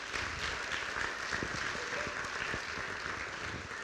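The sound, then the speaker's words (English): One person claps steadily for about four seconds, a fairly loud, dense patter of claps with no voices over it. “I didn't want the one person that clapped to feel embarrassed, so thanks for jumping in on that.”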